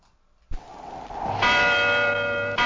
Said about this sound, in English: The bell rings out over the village, an ominously silent, utterly deserted village.